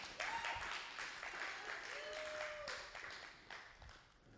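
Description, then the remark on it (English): A crowd applauds steadily for several seconds, a dense crackle of many hands clapping at once, with a few faint whistle-like tones rising through the noise. The clapping congratulates a woman on earning an MBA, during a sermon. “No, clap.”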